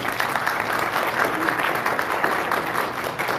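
An audience bursts into steady, sustained applause for a friend being honored, many hands clapping together in a dense, even wash of sound that holds at a consistent loudness throughout.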